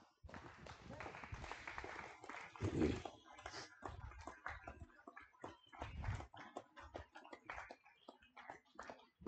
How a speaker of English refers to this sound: Your clapping was more rousing than your good morning.